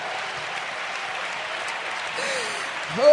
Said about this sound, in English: Oh, you might as well clap your hands because it's right anyhow.